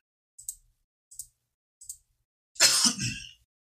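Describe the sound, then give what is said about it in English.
Three short, soft coughs spaced about a second apart, followed by a louder, harsher, drawn-out cough burst into a microphone from a person with asthma. No one is talking. “I hate coughing in a mic, but as I always say, my damn asthma.”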